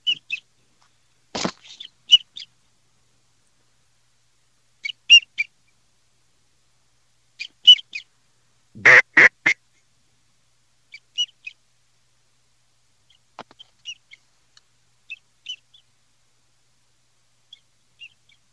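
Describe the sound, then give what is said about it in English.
A flock of birds calls repeatedly in short, high chirps as it approaches, some fainter than others, with a couple of loud, sharp bursts standing out. No one speaks. “Come on, birds, break in.”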